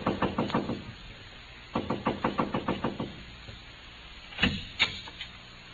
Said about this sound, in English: The house was quiet, like nobody was at home, but I saw a dim, spooky light inside somewhere. So I just kept knocking and knocking.